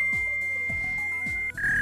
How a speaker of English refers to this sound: Alright. Number one was a fax machine.